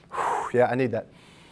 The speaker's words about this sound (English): I need that. And guess what? I'm going to take another breath here.